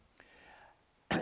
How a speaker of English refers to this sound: Sorry about me coughing all the time.